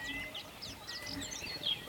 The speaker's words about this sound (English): Hear the chirping whispers of birds passing by. It's nice out here. It's quiet.